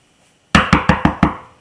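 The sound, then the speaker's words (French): Five quick, firm knocks on a door in an even rhythm, fairly loud, after a brief silence, with no voices. “Encore? Qui est-ce qui est à la porte?”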